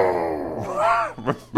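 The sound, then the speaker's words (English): A person vocally demonstrates an "inner growl": a low, throaty growl, rumbling and rising slightly in pitch, then breaking off into two short grunting bursts at the end. “can you demonstrate, please, the inner growl?”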